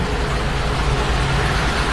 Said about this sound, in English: It's 8 o'clock in the morning in Cuneo, and a water truck is being filled up at the city's fire department. It takes about 15 minutes to fill it with 8,000 litres.